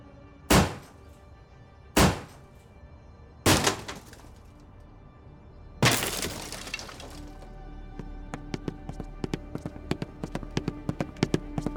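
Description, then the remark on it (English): Three heavy, evenly spaced thuds as police slam against a door, then a loud splintering crash as it gives way, followed by scattered clattering and tinkling debris settling. No one speaks. “Open up now or we're busting down the door.”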